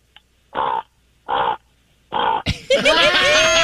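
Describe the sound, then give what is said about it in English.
A person imitates a raven with three harsh, raspy croaks at a steady pace, fairly loud, followed by a louder, busier burst of voices and noise. “We want everyone to hear your raven impersonation.”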